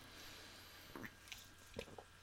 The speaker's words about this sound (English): Now, hold on, let me take a sip of my lemon lime seltzer, which tastes fucking horrible, but it's good for a diet.